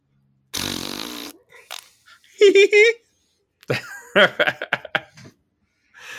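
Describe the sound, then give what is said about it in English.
A loud, buzzy mouth-made fart sound, a voice imitating flatulence, bursts out for under a second, followed by a brief squeaky vocal noise and then a person talking. “So just to brighten the mood for a second, I'm going to make a fart noise.”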